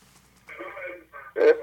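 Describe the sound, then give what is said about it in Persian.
A television plays in the background of a caller's phone call, its muffled, tinny voices coming through the line, with a louder burst of sound near the end. “خواهش میکنم تلویزیونتون رو خاموش کنید، با تلفن صحبت کنید.”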